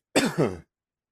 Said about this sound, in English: Dang, allergies making me cough.